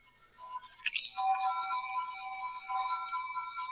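A laptop gives off a steady, melodic electronic buzz made of several sustained tones layered like a chord, starting with a brief warble before settling into a continuous hum. No one speaks.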